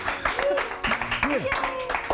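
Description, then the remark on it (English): A studio audience claps steadily for a dog named Coney in a dense, continuous patter, with rising and falling whoops and cheering voices mixed over the applause for about two seconds. “A big round of applause for Coney.”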